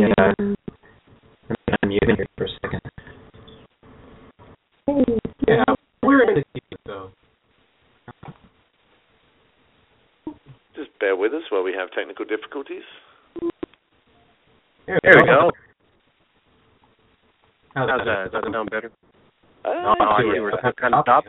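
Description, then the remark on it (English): Bursts of a person talking over a thin, band-limited online call line, the voice sounding hollow and echoey, with short silent gaps between phrases. “I don't know, you're kind of echoey, but at least I can hear you.”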